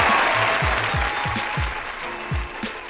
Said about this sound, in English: Hit the applause one time. Give it up for the nominee.